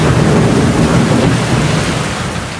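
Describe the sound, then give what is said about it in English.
Heavy rain drums on the tin roof of a home in Taylor, Mississippi, in a loud, unbroken roar, a dense hiss of countless drops with a deeper rumble underneath. No voices are heard. “It's the kind of rain you can't see out the windows.”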